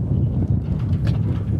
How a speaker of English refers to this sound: Oh, it's a bit windy.